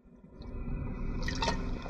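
A quiet gulp and slosh of liquid, someone taking a swig of water, with a brief wet squish near the end and no talking.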